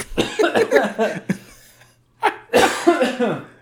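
A person coughs in two close bursts: a run of harsh, raspy coughs for about a second and a half, a brief pause, then another strong fit of rough coughing, loud and near.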